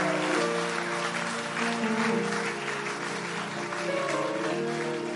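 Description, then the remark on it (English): An audience claps steadily, a dense, continuous wash of many hands that stays loud throughout, with a faint tonal hum of voices or music running underneath. “Are you clapping now? You're doing something like clapping.”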